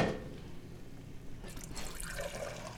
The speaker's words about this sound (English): So how much water are you adding? I'm adding about a quart, but I always start with less than what I think I need, so I can end up adjusting the consistency at the end with more water.